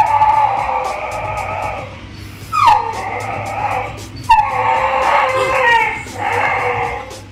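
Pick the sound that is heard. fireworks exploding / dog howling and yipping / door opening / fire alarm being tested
dog howling and yipping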